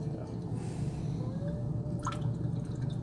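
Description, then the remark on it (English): A thin stream of 99 Bananas liqueur trickles into a glass for a few seconds, 1.5 ounces poured for an adult banana split, a soft steady pour with faint dripping, set against low background murmur. “So I'm going to do 1.5 ounces here. 99 bananas.”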